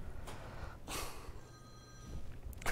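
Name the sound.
telephone ringing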